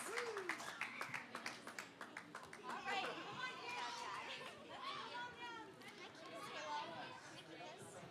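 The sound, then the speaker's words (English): Audience applause for children after they sang a Christmas carol: a burst of clapping opens, quick and dense, then gives way to lively crowd chatter with many overlapping voices, including higher children's voices. “Round of applause for our kids.”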